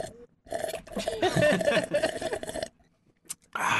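slurping a hot drink

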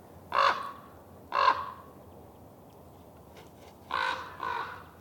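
raven cawing

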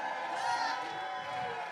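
audience cheering

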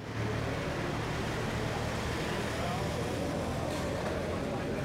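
road traffic noise

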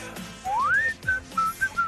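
person whistling

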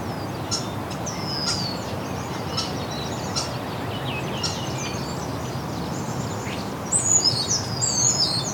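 northern parula song

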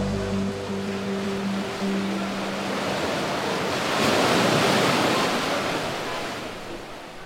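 ocean waves surging

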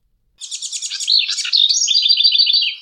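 house wren song

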